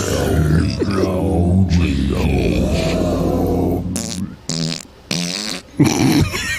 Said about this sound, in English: Sorry. Those farts are just so funny.